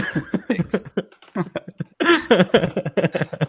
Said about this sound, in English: Let me clear my throat. Thanks.